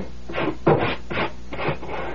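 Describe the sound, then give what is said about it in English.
Scraping dirt off a floor where a heavy old chest had stood: about five steady, rasping strokes in a quick back-and-forth rhythm, gritty and fairly loud, with no voices. “Now, scrape that dirt where the chest was standing.”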